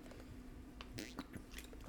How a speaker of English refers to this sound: Let's take a woosah. Let's drink a water.